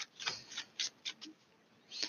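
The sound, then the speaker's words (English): Quiet papery rustling as a deck of tarot cards is shuffled during a tarot reading, coming in several short, uneven bursts with brief pauses between them. No one speaks. “Ignore me, but I'm shuffling the Taramucha deck.”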